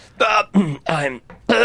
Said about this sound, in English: So as I leaned down, I sort of stepped on it and I went face first into all the ashes. I've got ashes covering my face and I'm coughing.